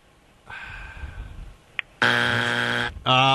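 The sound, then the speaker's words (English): A loud, harsh buzzer blares for about a second, cuts off briefly, then sounds again, after a softer humming tone and a quick faint blip. “They buzz me, so that way you know that I can't.”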